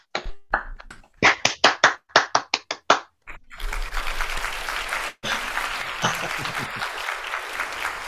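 A run of sharp, evenly spaced handclaps gives way to loud, dense audience applause that carries on for several seconds, dipping briefly before continuing steadily.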